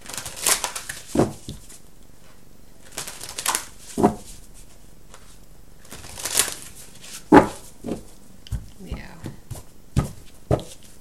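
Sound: shuffling tarot cards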